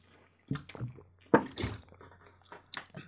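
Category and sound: human body sound, person sipping water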